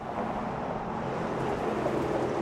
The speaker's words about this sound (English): It sounds like a bumpy ride. That's because the cars are driving over bricks that are almost 130 years old. The bricks on Michigan Avenue were laid in the late 1890s.